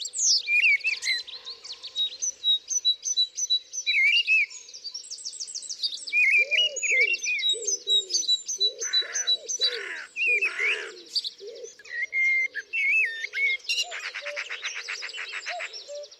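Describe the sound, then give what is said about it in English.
A lively garden chorus of several birds singing at once, with continuous high chirps, whistles and rapid trills, while a dove's soft, low cooing repeats underneath. No one speaks. “And I realised the other day that birdsong is the soundtrack to my gardening.”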